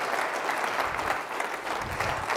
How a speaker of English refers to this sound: Give your pastors a good hand clap. Praise God.